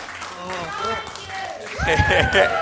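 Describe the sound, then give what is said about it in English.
An audience breaks into a burst of clapping and cheering near the end to welcome a man as he arrives, rising suddenly over a background of overlapping voices that fill the first part. “Give him a clap.”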